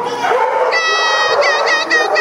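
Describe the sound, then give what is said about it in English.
A chorus of dogs at a doggy daycare howling and yelping together, steady and fairly loud, with wavering high-pitched cries overlapping throughout the short stretch. “Both women say they can take up to 40 dogs at a time.”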